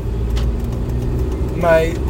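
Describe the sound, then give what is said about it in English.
A steady, low car engine hum and road rumble from a car acting up fill the whole stretch, constant, with a brief voice-like tonal sound rising near the end. “My car's being a little crazy.”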